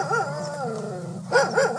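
A dog named Randy at the Santa Barbara County Animal Shelter howls and yips, with a run of wavering rising-and-falling cries followed by a few sharper, louder bursts. No one speaks.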